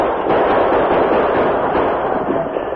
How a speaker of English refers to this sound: The inadequate defense of the fort was immediately evident, and soon, protected by constant gunfire from the attacking horde, several braves carrying a large log moved to the heavy gates to ram them open.